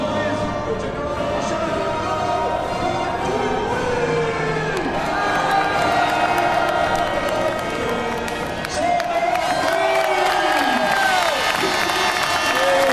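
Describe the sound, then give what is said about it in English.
A large crowd cheers and shouts as it invades the pit lane at the end of a motor race, many voices overlapping into a steady, loud roar that holds for the whole stretch, with occasional higher calls rising above the mass. “Right, now the crowd invasion of the pit lane begins.”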